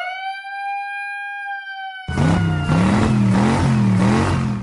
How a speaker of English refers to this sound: Siren. Give me the siren.